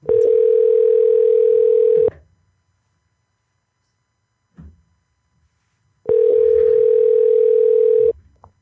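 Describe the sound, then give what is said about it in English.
A telephone ringback tone sounds twice, each steady buzzing ring lasting about two seconds with a long silent gap between, loud, with a brief faint noise in the pause. “Come on, bitch, answer the phone.”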